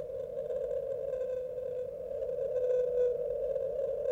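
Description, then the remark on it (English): A 52-hertz whale song sped up tenfold to about 520 hertz: one long, unbroken moaning tone with a faint buzzy edge, holding steady and swelling slightly louder toward the end, with no voices over it. “So this has been sped up to 10 times the speed, otherwise you won't be able to hear it properly.”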